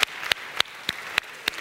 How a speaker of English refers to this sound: I'm clapping for y'all.